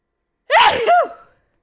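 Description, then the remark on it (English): A single loud sneeze from a person with allergies bursts out abruptly after silence, with a sharp harmonic rise and fall lasting under a second before quickly fading. “so not really much to say besides I'm going to sneeze.”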